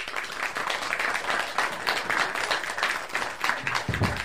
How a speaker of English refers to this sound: Very importantly, our volunteers, we just cannot say enough about our volunteers. We have the most fantastic group of helpers in here, and I would love to give them all a big clap.